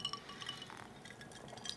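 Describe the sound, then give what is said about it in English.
Drinking glasses clink together as people toast with drinks containing a little pepper, a few light, bright rings scattered across the moment, fairly quiet with soft liquid movement underneath and no talking. “So we're going to cheers here, some clinkies, get some actual reactions to us.”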